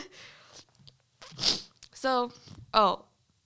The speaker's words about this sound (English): I'm so sorry about the sniffles and stuff. My nose is, like, dying,